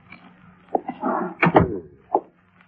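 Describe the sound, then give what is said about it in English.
A door being opened: a few sharp clicks and knocks from the latch and handle, with a short scraping rustle in between, and no voices. “Gorrell was still unconscious when I opened the door about 15 minutes later.”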